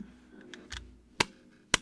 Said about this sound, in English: I don't know, it's like two pieces of wood kind of smacking together a little bit